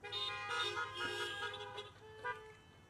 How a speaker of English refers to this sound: I don't know why you're honking. You're just going to run to the restaurant.